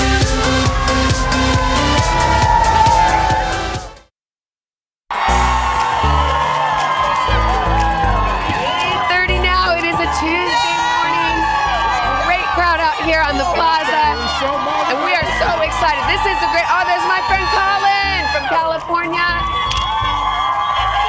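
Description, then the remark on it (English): A loud crowd of holiday shoppers and parade goers at a Small Business Saturday holiday market on a plaza cheers and whoops continuously, with high-pitched shouts and excited screams rising over a steady roar, briefly cut off by a second of silence before the cheering resumes at full volume. “Awesome crowd.”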